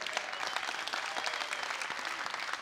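A crowd breaks into steady applause, many hands clapping in a dense, continuous patter that holds at an even loudness throughout, with no voices standing out.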